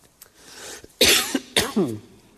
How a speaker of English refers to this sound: I'm going to have some probably periods where I have a coughing fit, so just bear with me.